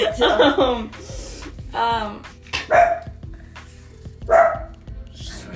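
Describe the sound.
A dog barks loudly several times at irregular intervals, sharp yaps separated by short pauses, with faint voices and background noise.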